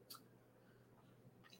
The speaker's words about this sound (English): that clicking is from the pedal rods.